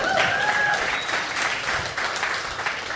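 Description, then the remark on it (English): A church audience claps steadily, a dense wash of many hands applauding at an even loudness, with a few whistles rising briefly above the clatter early on. “Somebody ought to clap for that.”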